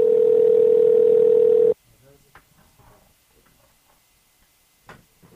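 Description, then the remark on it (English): A loud, steady phone ringing tone hums for under two seconds as a call is placed a second time, then cuts off abruptly into near silence broken only by faint rustles and small clicks. “Oh, yeah, it's ringing.”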